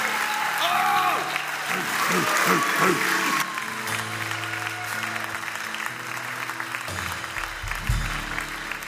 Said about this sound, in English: Give Jesus a hand clap as here he comes. Come on, give him a good hand clap.